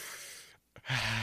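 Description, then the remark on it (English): Heavy, strained breathing of a man in the back of an Uber trying not to throw up: a long noisy breath, a brief pause with a short catch, then another loud rasping breath. No talking. “That is what we like to call labored breathing.”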